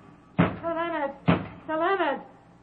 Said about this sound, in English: Open this door. Who knocks?